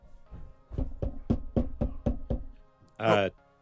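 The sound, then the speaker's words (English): Seven quick, evenly spaced knocks on a monitor, fairly loud, in a steady rhythm, followed after a brief pause by a short, louder rasping burst of noise. “Someone just knocked on my monitor.”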